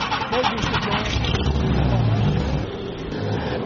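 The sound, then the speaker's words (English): A car engine revs loudly, a thick, steady roar with deep rumbling that holds for a few seconds before easing slightly at the end. “I'm grabbing my Aquanet, revving up the DeLorean.”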